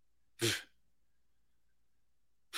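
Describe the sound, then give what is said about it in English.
A single sharp sneeze bursts out, loud and explosive, then quiet follows before the onset of another sound cuts in at the very end. “God bless you, man.”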